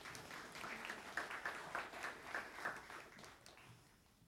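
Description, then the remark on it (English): A church audience claps as a new communications team manager is announced, a steady wash of applause with crisp, overlapping hand strikes, swelling briefly mid-way and then tapering off; no one speaks over it. “Yes, we can clap.”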